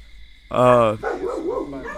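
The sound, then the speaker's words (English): A deaf dog lets out one loud, drawn-out bark, and a person starts talking right after it ends. “Goddamn deaf dog.”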